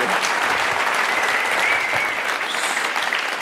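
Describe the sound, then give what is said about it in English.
A crowd at a two-day event gives a big round of applause to thank the organizer, a dense, even wash of many hands clapping at a loud level throughout, with no voices standing out above it. “Thank you again for putting on an event that people aren't selling things from the stage for 2 days and putting quality event, being a big round of applause.”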